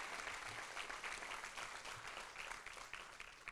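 A crowd claps steadily in sustained applause, a dense, bright patter of many hands at a fairly even loudness throughout.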